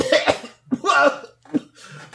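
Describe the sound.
A voice imitates hacking coughs, several rough bursts in a row with short gaps, fairly loud, like someone sputtering while trying to talk and coughing up spider webs stuck in the throat.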